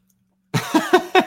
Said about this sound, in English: I got to sneeze.